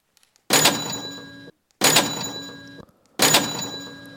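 cash register sound effect

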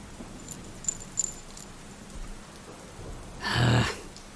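thunderstorm with rain

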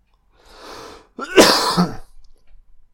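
coughing

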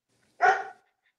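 dog barking

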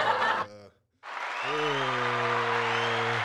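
applause

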